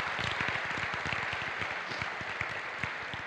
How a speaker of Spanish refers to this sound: Let's just give a clap offering to the Lord. Vamos a darle please. Un aplauso al Señor.